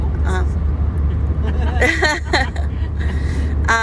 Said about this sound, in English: I am currently in a car driving east through Texas.